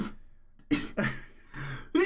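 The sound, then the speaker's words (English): A rapid run of about five sharp, explosive sneezes, each a loud burst of breathy noise separated by brief pauses, with no talking in between. “Bless you, my sorry.”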